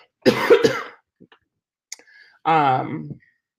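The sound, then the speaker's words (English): A harsh burst of two quick coughs, then a short pause and a rough, voiced throat clearing. No speech accompanies the sounds. “Just real quick, because I've got to go because I'm going to be coughing.”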